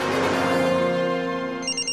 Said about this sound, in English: So Chloe's on the road, 7 miles away from Capital City, when suddenly her cellular phone rings.